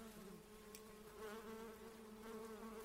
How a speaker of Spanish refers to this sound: También es el hogar de las famosas abejas sin aguijón.